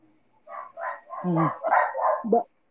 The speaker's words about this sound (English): It's a dog.